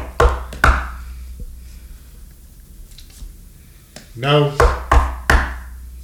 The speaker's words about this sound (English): All right, so Deputy Sheriff gets up to the house, and he's going to knock on the door there.